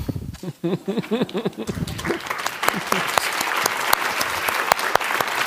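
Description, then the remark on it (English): A speaking voice ends the last lines of a poem, then an audience breaks into steady, dense applause that holds strong for several seconds, a wash of many overlapping hand claps. “Anybody who stands at a podium or anything like that and says they don't appreciate applause would be lying, but you don't have to applaud after every poem.”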